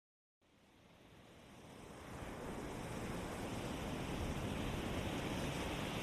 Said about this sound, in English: This week's meditation will have the sound of the ocean that I recorded out at the coast in the background, and it will help you calm your mind by focusing on the breath.